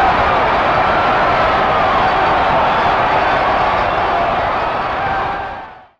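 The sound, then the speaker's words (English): A stadium crowd of baseball fans cheers wildly after a home run as the Pirates win the World Series 10-9, a loud, unbroken roar that holds steady for several seconds before quickly fading out, with no one speaking over it. “For a home run, and the Pirates win it 10-9 and win the World Series. And the fans go wild.”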